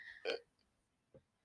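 A short, close burp erupts with a brief guttural rasp, followed by quiet and a faint low gulp, before another loud sound cuts in at the very end.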